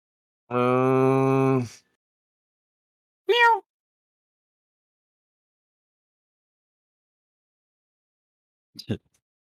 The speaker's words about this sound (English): Oh, excuse me. Sorry, Kitty would like to say hi. Meow. Say hi, Kitty.